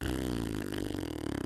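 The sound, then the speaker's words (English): A voice imitates a nasty fart by John C. Reilly, a long, buzzy, loud sputtering raspberry held for over a second with a wobbling, flapping texture, on its own. “The nastiest fart.”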